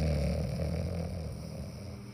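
A steady, low rumbling snore from someone asleep drones on for about two seconds, a deep buzzing breath with a rough, fluttering texture and no talking over it.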